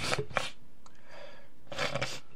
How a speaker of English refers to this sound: Man, my nose is sniffling today. Excuse me. I'm so sorry.